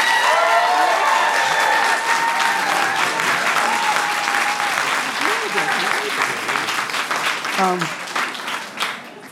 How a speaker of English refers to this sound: If you think the pro side won the debate, round of applause.